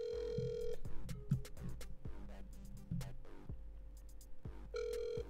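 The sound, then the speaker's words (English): A phone line ringing on an outgoing call to a special guest for an interview: a steady buzzing ring tone at the start and another near the end, with busier, rhythmic electronic sounds in between. Fairly loud, no voices. “So yeah, let's hit him up. Fucking special guests and shit. Hopefully this works.”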